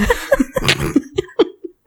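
A short run of breathy bursts, several quick coughs with voiced, chuckle-like catches between them, trailing off into a couple of softer hacks, with no words spoken.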